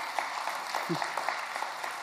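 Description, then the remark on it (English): A church audience claps steadily for daycare days, many hands blending into a dense, even patter of crisp slaps with no pauses, with a faint murmur of voices underneath. “So when I talk about daycare days, you can clap for that.”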